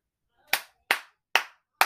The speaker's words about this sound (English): He's worthy of our praise. Clap your hands like you have some.